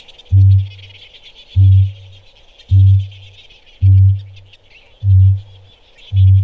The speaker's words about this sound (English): And there were some weird parrots there. This is what the male kakapo sounds like when it's booming.